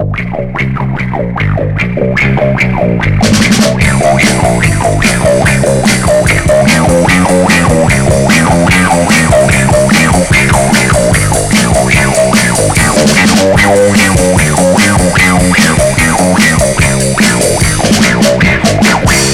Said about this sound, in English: And listen to the funky bass guitar sound you get with the wah-wah pedal.